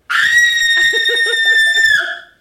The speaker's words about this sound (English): I just had to turn away from the mic and do a little scream.